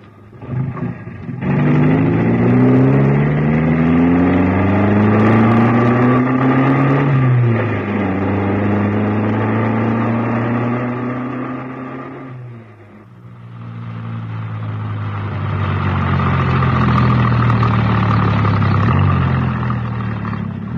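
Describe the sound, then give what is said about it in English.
A car engine is started with the ignition key, turns over and roars to life, then revs in rising sweeps as the car pulls away, easing off briefly midway before accelerating loudly again. No one speaks. “I'll just get the ignition key.”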